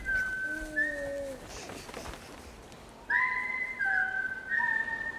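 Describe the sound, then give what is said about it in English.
A clear whistled three-note tune of sustained notes, the theme a character whistles in a movie score, repeated twice with a short pause between phrases, carried over a faint background hiss with no talking. “To the degree that there is a recurring theme in this movie, it really is just this thing that the character whistles. There's a long version of it, but it's really three notes.”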